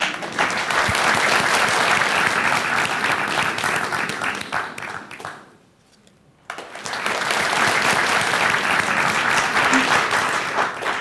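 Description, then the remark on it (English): A large audience claps and cheers in a loud, dense wash of applause that fades out briefly around the middle, falls nearly silent for a second, then surges back just as strong. “Cheer.”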